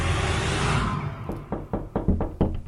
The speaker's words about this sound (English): Why is there two lots of knocking?